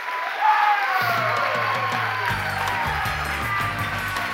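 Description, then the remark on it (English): A standing crowd claps and cheers loudly and steadily for a panel being introduced, with whoops rising above the dense applause. A thumping music beat starts underneath about a second in and continues throughout. “And if you could please stand up and give a round of applause to some of the most hardest working people I know.”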